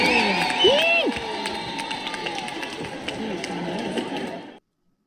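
A concert crowd cheers in a steady, dense roar, with individual voices whooping and shouting above the din for about four and a half seconds before it cuts off abruptly.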